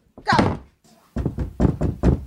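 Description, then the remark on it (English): A heavy door thuds shut, followed by several dull, rapid thumps of wood in an uneven rhythm, loud. “Take your little dog too. Here's the door. Go.”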